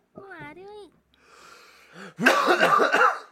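A short vocal sound and a breathy rush give way to a loud, synchronized cluster of overlapping coughs, several men hacking at once in a dense burst lasting about a second.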